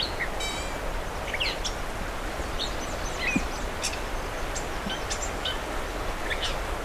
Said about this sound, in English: I've got a catbird coming up here. Yep.